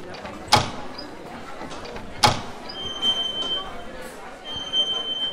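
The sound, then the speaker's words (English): Old panel doors opening into the ballroom of Wicked Whack Manor: two sharp clunks about two seconds apart, followed by a thin, high creaking squeal as they swing, over a low background rumble. “Open the old panel doors,”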